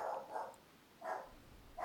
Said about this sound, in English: You're just going to have to push through, it's okay. The dog's going to make it onto these recordings.